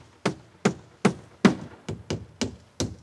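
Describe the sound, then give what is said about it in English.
Steady hammering from out back of a yellowish house: eight sharp, ringing blows with a solid low thud, evenly spaced at first and then coming a little quicker. No voices, just the strikes and their brief decay. “I heard hammering coming from out back.”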